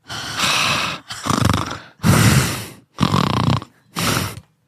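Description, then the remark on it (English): A voice imitates heavy, raspy breathing, as of a woman silently breathing on the other end of a phone line, five loud breaths in a steady rhythm with short pauses between them and no talking. “She just like, she's like breathing on the other line.”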